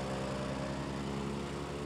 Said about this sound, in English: picks up bundles of witch hazel and shoves them into the wood chipper attached to his truck, two or three big bundles at a time.